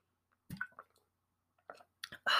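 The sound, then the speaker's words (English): A few wet sipping and mouth-click sounds as someone takes a quick sip of water, spaced across a short stretch, ending with a louder breathy swallow or exhale right at the microphone. “I'm going to take a quick sip of water.”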